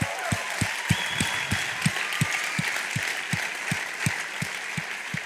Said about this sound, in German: Und darum habe ich gedacht, genau, geben ihm einen Applaus.